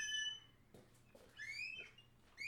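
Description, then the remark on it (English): A squeaky freezer door in a rented house swings shut with several high, whining squeals at the start, middle and end, separated by soft knocks and thumps, fairly loud, with no talking. “Look, even my fucking freezer door is squeaky as fuck.”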